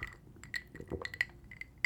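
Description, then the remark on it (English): Ice cubes clink and rattle against a glass in a quick, irregular series of bright, high taps, some sharper than others, with no one talking. “just, you know, when the ice melts and it starts to like move around, that feels pretty good.”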